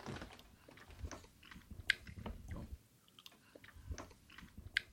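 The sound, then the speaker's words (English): People chew and bite into fried chicken with chicken gravy and grits, with soft crunches and wet mouth sounds in an irregular rhythm, fairly quiet and with no talking. “Now it was time to dig in. And the mark of a good meal, everything gets very quiet.”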